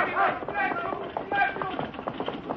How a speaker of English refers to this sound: Not too fast for that buckboard